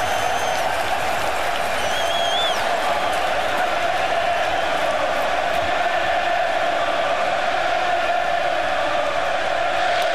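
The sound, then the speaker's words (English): A packed, standing-room-only crowd at a Pittsburgh Pirates playoff game roars and jeers at Johnny Cueto without letup, a dense, steady wall of cheering voices lasting the whole stretch, with a few shrill whistles poking through early on. “Well, this standing room only crowd trying to get under Johnny Cueto's skin, and they might be.”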